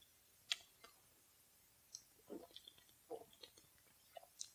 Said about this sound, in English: Give me 1 second because I need to take a drink of water.